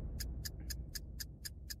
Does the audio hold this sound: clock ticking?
yes